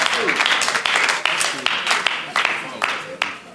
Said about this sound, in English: See the way the sisters are clapping? They know it.